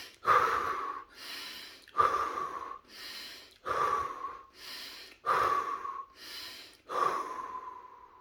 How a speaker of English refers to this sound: And then you might do tapping as you do your affirmations, and you also proceed to do deep breathing.